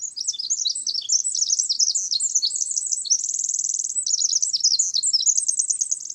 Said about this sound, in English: Listen carefully to the song of the Pacific Wren.